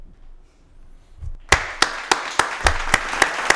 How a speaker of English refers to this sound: And the reason why I'm applauding that, because one of my questions that I didn't get to ask you is what's going on with the homelessness in Patterson?